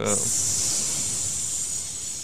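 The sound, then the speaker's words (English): A voice imitates a snake with a long, steady hiss lasting a couple of seconds, fairly loud, opening with a brief vocal onset before settling into a sustained airy sound. “Can you hear the snake rattle?”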